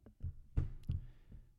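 Several dull, heavy thumps of a person slamming hands like karate chops down onto a table, arriving in an uneven rhythm of three main hits plus softer ones, each a low, punchy impact with a brief rattle.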